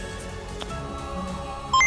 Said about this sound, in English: Calculating computer activated. Computers, beeps.